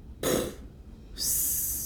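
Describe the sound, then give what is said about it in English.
A voice imitates a single rough cough from too much smoke, followed after a short pause by a long airy hiss like a wheezing exhale. No words are spoken. “And like you're coughing as too much smoke.”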